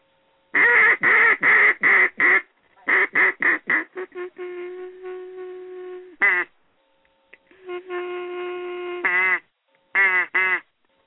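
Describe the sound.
A duck call is blown to show the reed dropping out of oscillation as forward pressure is reduced. A rapid series of sharp, raspy quacks, then drawn-out, wavering mournful notes that sag and break, repeated twice and ending with a few quick quacks.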